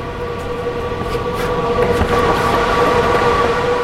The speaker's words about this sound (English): That humming you hear? It's the sound of hundreds of fans blowing past hundreds of little computers. They're on 24 hours a day, cranking through complicated math problems, making bitcoins.